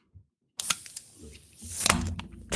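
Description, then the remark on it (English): A sharp metallic pop as a soda can is opened, followed by a long, steady fizzing hiss that lasts about two seconds, with a few small crackles mixed in. “That was a long hiss, my friend.”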